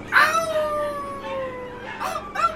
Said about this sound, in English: Jesus Christ, what's that sound? Are we driving through an alley of dogs? No, those are wolves. We're in the country.